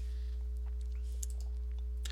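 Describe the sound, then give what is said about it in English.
Soft, irregular keystroke clicks from typing on a computer keyboard, scattered across a couple of seconds over a steady low electrical hum, with no one talking. “This is the fun part of the show where I'm kind of like taking a break while I'm talking and typing.”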